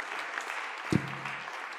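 An audience applauds the speaker's wife as she comes up to read the scriptures, a steady wash of many hands clapping that fills the whole clip at a moderate level, with one brief louder low thump near the middle.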